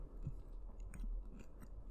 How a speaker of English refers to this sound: Also, everybody. Just fucking munching. I'm hungry. I apologize in advance.